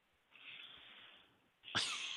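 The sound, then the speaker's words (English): Heavy breathing from a man in a voicemail message over a phone line: a long, airy exhale, a brief pause, then a sharper, louder rush of breath that stays harsh and hissy to the end. No one speaks. “Is he just breathing?”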